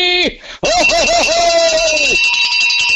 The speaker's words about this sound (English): the bell must be rang.